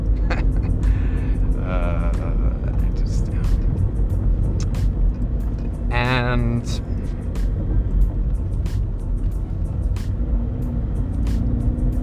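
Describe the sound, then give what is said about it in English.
Steady low rumble of a car moving through traffic, heard from inside, with brief squealing tones and occasional clicks over the road noise while a person speaks briefly. “I'm just gonna drive.”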